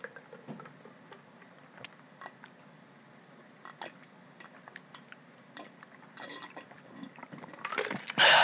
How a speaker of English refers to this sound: And I am like super thirsty. I don't know why I'm thirsty. Pulling out the water bottle. Here's to feeling good all the time by drinking water.